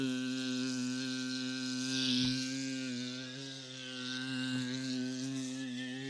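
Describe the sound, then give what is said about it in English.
A voice imitates a fly buzzing around a room, holding one continuous droning hum for about six seconds that swells and fades in loudness as the speaker moves his head. “Flies buzzing around in surround sound.”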